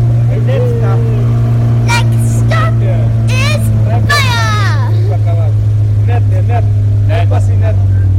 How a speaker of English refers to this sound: So this is one of the trips from Moka to that airstrip that I just mentioned. We got to take a boat.